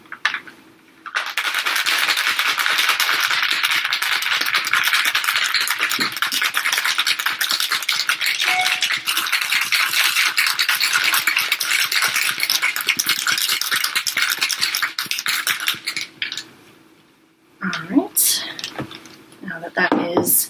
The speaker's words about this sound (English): Once you've shaken that aggressively for about 15 seconds, you will add in the ice. And the top back on and shake it for about 15 seconds again.